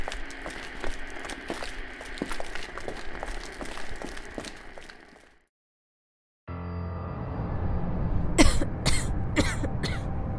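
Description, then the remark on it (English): A person struggling to breathe amid dust and smoke coughs in a quick cluster of four or five harsh, rasping bursts over strained, noisy breathing, following a steady rustling stretch and a brief silence. “Honestly, I don't know why you're having a hard time breathing.”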